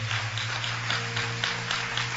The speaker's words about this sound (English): Keep clapping for them. God bless you. Clap for them. Clap for them. Clap for them. Clap for them.